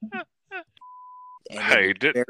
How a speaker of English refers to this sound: Wow, this episode is going to have a lot of beeps in it.